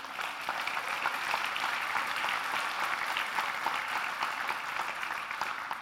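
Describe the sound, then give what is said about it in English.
An audience claps steadily for several seconds, a dense, even wash of many hands with no pauses, holding at a fairly constant loudness throughout. No one speaks over it. “I thank you for clapping, because I have just felt like this all week long.”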